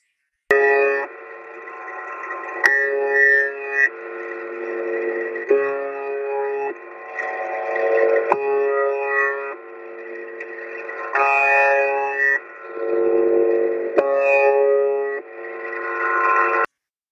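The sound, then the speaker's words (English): A harsh, droning buzz from the shortwave station UVB-76, known as The Buzzer, repeats in steady blocks about a second long, separated by brief gaps, a monotonous buzzer signal rich in buzzy harmonics and sounding band-limited and radio-filtered, with no voices. “The Buzzer UVB-76”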